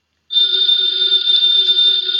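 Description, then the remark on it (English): A telephone bell rings loudly and continuously after a brief silence, a steady, shrill electric ring with no voices over it. “Ladies and gentlemen, that phone bell means exciting adventure.”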